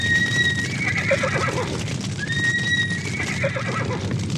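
A horse whinnies loudly, two drawn-out, quavering neighs in a row, over a steady low rumble with faint hoof clatter underneath.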